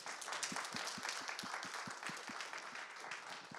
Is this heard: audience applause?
yes